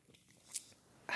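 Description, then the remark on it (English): Quiet sipping and drinking of water: a short airy slurp, then a louder, wetter gulp-like burst at the end, with soft mouth noises between. “Wait, hold on, let me drink some water, because girl, I'm just like going off right now.”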